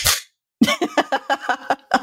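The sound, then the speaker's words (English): A voice imitates hands clapping, as if turning on a light with a clapper: a sharp breathy burst, a short pause, then about eight quick, evenly spaced, moderately loud vocal pops in a steady rhythm. “And I turn my head, lift my hands, and like I'm turning on a light with the clapping noise, I go...”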